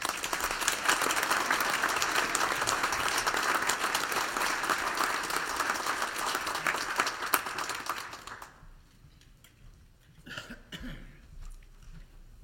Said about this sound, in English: Please join me now in a round of applause to honor and thank them for their service.